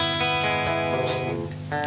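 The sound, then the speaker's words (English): An electric guitar played through the tremolo channel of a brand-new Fender Twin Reverb amp during the Twickenham sessions sustains bright chords with a rapid, wavering pulse in its volume, a fairly loud amplified tone with a burst of hiss partway through and no voices. “playing through the tremolo channel of his Fender Twin Amp.”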